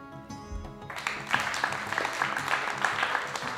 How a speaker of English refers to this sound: Who is clapping? Stop. This is no cause to celebrate.